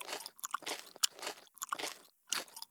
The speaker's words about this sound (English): I just have to finish chewing this bite of warm mealworms.